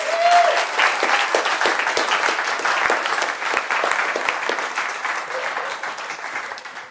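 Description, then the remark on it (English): A steady round of applause for the actors from many hands, dense rapid clapping that stays fairly loud for about seven seconds before tapering slightly at the end, with no talking over it. “All my wonderful actors, you can just give them a round of applause.”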